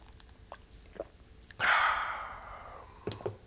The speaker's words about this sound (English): Wet my whistle, take a little swig of that.